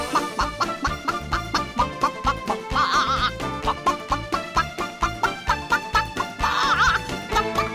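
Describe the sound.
A voice imitates a chicken, clucking a tune the way the character Clara Cluck sings, in a steady, rapid rhythm of short repeated clucks. It is loud, with a couple of higher, drawn-out squawks mixed in.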